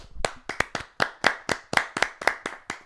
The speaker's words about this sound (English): I think the only thing we should start with is just a little round of applause for our SME Mustangs.